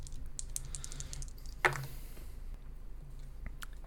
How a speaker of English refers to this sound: Well, let's roll a dice and find out.